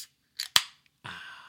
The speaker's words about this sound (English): All right, so I'm going to open this can of Jack's Abbey.